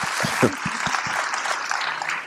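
A crowd applauds with dense, steady clapping that fills the whole clip, a few sharper claps standing out near the start before settling into an even wash of hand claps.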